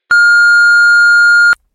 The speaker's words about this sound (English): So please leave your message after the beep.